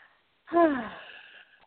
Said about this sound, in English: Ah, good breath. That's the kind that releases.